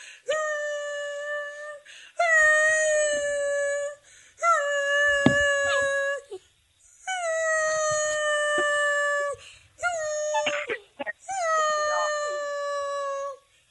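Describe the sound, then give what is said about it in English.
A dog howls in long, sustained, slightly wavering notes: about five drawn-out howls separated by brief pauses, loud, with no talking. “I'm going to see if I can make my dog bark.”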